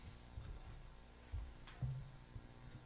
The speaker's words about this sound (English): Are we having audio issues? Humming, okay.